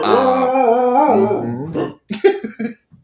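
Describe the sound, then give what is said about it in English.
Rose, the speaker's dog, whines for attention in a long, wavering, pitch-sliding cry, then breaks into a few short, choppy vocal bursts. It is fairly loud, with no talking. “This episode is co-starring Rose, my dog, who clearly wants all the attention, and I should have shut the door, but I feel really bad because she winds at the door and she's like, I want to be in the Sunshine Steven Podcast.”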